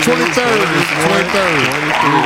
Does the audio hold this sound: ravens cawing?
no